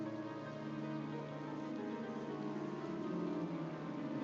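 Steady, even rain hisses throughout as night falls, mixed with sustained soft piano tones, with no talking.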